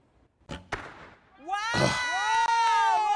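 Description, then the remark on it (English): An arrow shot from a bow pops a balloon: two sharp cracks in quick succession, followed at once by loud, excited exclamations from voices. “Right in the balloon.”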